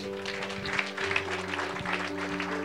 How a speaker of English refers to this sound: Right on. I want you guys to clap your hands.